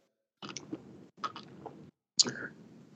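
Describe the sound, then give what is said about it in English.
Three gulping bursts as someone quickly chugs two White Claw hard seltzers from a Stanley mug, each swallow wet and noisy with short pauses between, the last one sharper and louder. “He's chugging.”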